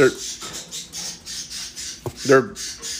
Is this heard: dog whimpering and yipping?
no